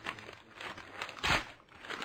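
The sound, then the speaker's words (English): A paper agreement being torn up and crumpled, a run of crinkling rips ending in one louder, sharper tear near the end, with no talking. “So much for your agreement, Whittaker.”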